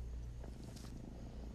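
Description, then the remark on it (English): A cat purrs steadily, a low continuous rumble that holds without break for the whole moment, fairly quiet with no voices over it. “Silly little kitty. Silly little kitty.”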